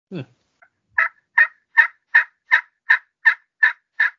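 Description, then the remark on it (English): A turkey gobble game call, with the screw in the end of its bell screwed in all the way, as tight as it goes, and played close to the microphone, rattles off a rapid, evenly spaced series of about nine or ten sharp, bright notes, each a clipped burst of equal loudness, with no talking over it. “So here's what this sounds like with the screw in the end of the bell screwed in all the way, as tight as it'll go.”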